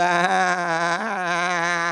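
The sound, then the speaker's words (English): A single drawn-out, wavering sheep-like bleat, fairly loud, sustained for about two seconds with a slight quiver. It sounds like a human voice imitating a sheep's baa. “Bah, bah. Dumb sheep, they tend to wander.”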